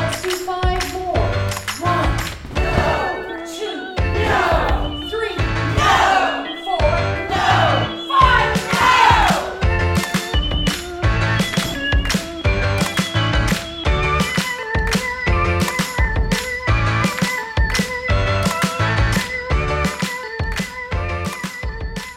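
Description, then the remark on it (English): The theme song of the show Women's Waves, produced in Vancouver, Canada, plays alone, with a steady rhythmic beat driving layered harmonic chords throughout and swooping, sliding melodic phrases in the first half, holding at a fairly constant loudness. “What you're hearing is our theme song.”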